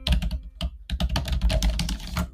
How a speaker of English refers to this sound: Typing ASMR. I don't know if you could hear that, but that was typing.